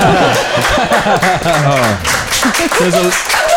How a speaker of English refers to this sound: The loudest applause from the father.